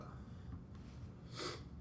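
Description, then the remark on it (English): A single short, sharp sniffle, a quick nasal intake of air over a low background rumble, with no talking. “You guys I guess we're sneezing and sniffling now.”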